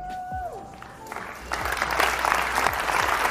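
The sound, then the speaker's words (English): An audience breaks into applause, a dense, steady wash of many hands clapping that swells up partway through and stays loud to the end, with a faint whistle-like tone fading out early on. “Don't clap for me.”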